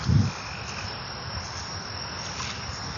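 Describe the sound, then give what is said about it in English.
A dense chorus of frogs croaking outdoors along a trail at Wakefield Park, a steady overlapping trill filling the background at moderate volume for the whole stretch, with a brief low thump at the start and no voices. “But just listening to those, all those frogs.”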